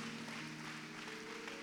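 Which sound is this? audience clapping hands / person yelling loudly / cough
audience clapping hands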